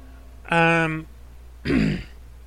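Someone clears their throat up close in two bursts: a short voiced hum, then a rough, gravelly rasp. No talking around it.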